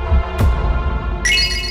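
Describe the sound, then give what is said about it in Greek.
A soft thump, then a bright, high-pitched chime of little bells rings out steadily over a low background hum for the last half second, a game-show sound effect signalling 'go higher' in a radio number-guessing game. “Τα καμπανάκια ανέβα. Σημαίνουν ανέβα.”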